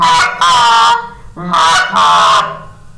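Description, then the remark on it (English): A goose call blown twice in a cluck moan: a short, sharp honk followed right away by a longer, drawn-out moaning honk. Loud and bright, with no talking. “And then you got the cluck moan, which is basically a cluck with a moan after it.”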